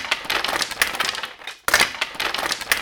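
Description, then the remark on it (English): A sack is shaken hard by a goat in a story, who rattles it furiously, giving a dense, crackling rustle of rapid bursts. A brief pause falls midway before the frantic rattling resumes just as loudly. “Kill them all," the goat shouted, rattling his sack more furiously than ever.”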